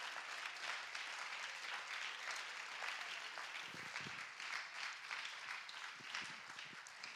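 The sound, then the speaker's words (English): A crowd applauds steadily, clapping their hands to the Lord in thanks, a dense wash of many hands clapping at once with no pause, holding an even, fairly loud level throughout. “Clap your hands to the Lord one more time and thank him.”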